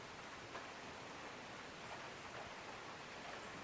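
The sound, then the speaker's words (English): Soft, steady rain falls continuously as a gentle, even hiss, quiet and unbroken, with no voices or other sounds over it. “Open your attention to the gentle rain.”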